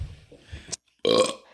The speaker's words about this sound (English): What about this? Can either of you belch Like burp? Okay. That's definitely you. There you go. Perfect.